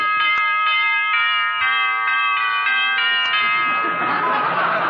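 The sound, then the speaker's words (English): A doorbell rings loudly and continuously for about four seconds, its steady metallic tone pulsing slightly, before giving way to a rush of broad noise. “Well, you really fixed that doorbell, didn't you, dearie?”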